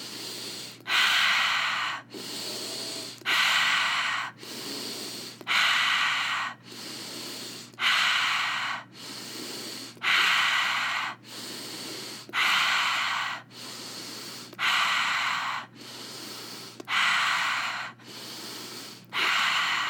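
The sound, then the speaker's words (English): Forceful breaths in a breathing exercise, breathing into the belly and chest and exhaling out through the mouth, repeat in a steady, quick rhythm: about a dozen airy whooshes in twenty seconds, each a hard push of air with short gaps between and no talking. “Breathing into your belly and chest, exhaling out through your mouth.”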